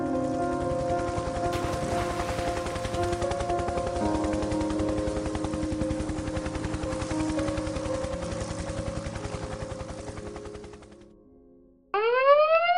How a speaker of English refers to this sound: You get that call, we'll sound our search and rescue alarm. The whole air crew who's on duty springs into action.